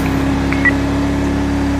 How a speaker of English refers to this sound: If anybody asks me why I'm driving a sports car like it's in a police car, while driving this police car like it's a sports car, it's because it actually technically is a sports car. I mean, it's a Charger, for crying out loud.